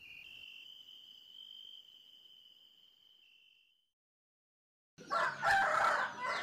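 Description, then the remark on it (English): A steady, high-pitched insect trill fades out into a brief silence, then a loud, harsh rooster crow bursts in and carries to the end, in the morning. “There was a cacophony of roosters in the morning.”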